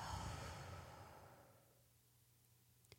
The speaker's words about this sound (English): I want you to try a quick exercise if you can. Just inhale, hold for a couple of seconds, and exhale, and I'll do it with you. So inhale, hold, exhale.